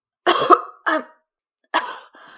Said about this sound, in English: Well, I'm not the one coughing.